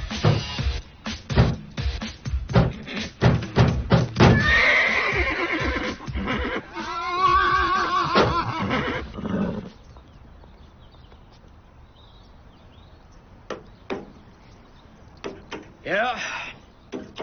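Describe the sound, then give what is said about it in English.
In a film scene, Rob Schneider imitates a horse while humping a mailbox, letting out loud, wavering neighs and whinnies over thumping clatter, then things go quiet apart from scattered knocks and one short whinny near the end. “And then, like, Rob Schneider, in his animalistic tendencies, is humping the mailbox and making horse noises.”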